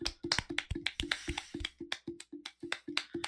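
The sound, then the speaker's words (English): Slow, steady clapping, about a dozen sharp claps at an even rhythm, with a few extra overlapping claps in the first half and no voices. “why are you slow clapping?”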